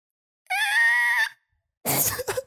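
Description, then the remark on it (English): A voice imitates a truck slamming on its brakes and screeching to a stop on a dirt road, with a loud, sustained, high-pitched squeal lasting under a second, followed after a brief pause by a short, rough, noisy burst. “We start waving at them and then they come to a screeching stop. Like I kid you not, they slam on the brakes.”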